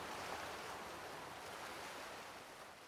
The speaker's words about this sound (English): You're listening to Waves on a Rocky Shore.